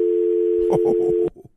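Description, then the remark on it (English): A steady, unbroken telephone dial tone after a caller hangs up hums loudly for over a second, a voice briefly talks over its final half, then the tone cuts off abruptly. “Dial tone in my face.”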